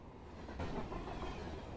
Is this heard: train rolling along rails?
yes